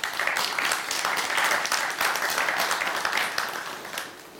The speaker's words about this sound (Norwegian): Så gi en applaus til administrerende direktør I Illum, Arne Kjørsvik.